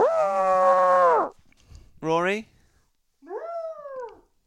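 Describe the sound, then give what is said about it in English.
A person imitates an elephant trumpeting with a long, loud, strained nasal call, then a shorter rising squeal and a softer sliding one; a voice speaks briefly between them. “Very effeminate elephants coming out here.”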